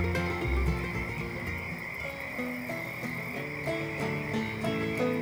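A dense chorus of frogs croaking continuously, overlapping calls at a steady, fairly loud level with a constant high trilling layer, no voices.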